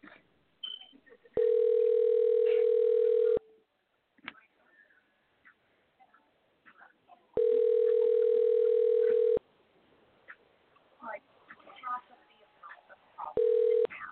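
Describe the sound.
Loud ringback tone of an outgoing phone call to a listener during a live radio broadcast: steady two-second buzzing rings repeating about every six seconds, two full rings and a third starting, with faint murmuring voices in the gaps.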